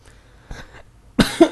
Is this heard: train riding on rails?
no